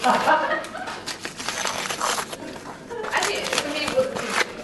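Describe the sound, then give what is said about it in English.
Gift wrapping paper being torn and crumpled as a present is opened, in busy bursts of crackling and ripping, with a brief pause before another flurry of rustling. “And I get open my present? Yes. Oh, let's see what's inside.”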